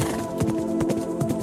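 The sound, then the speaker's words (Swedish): Horse hooves clip-clop in a steady, even rhythm, moderately loud, over a constant tonal background hum, with no talking. “Och det är något, det här är ju någonting som... Något i hästväg.”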